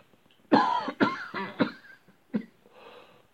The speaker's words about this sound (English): Sorry about a cough.